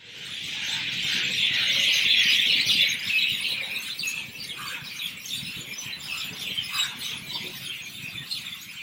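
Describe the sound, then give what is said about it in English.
Many birds chirp and tweet together in woods in a dense, continuous chorus, loudest in the first few seconds and then thinning slightly, with a soft outdoor ambience underneath and no talking. “Even if he couldn't understand the language of the birds, at least he could enjoy their pleasant chirping.”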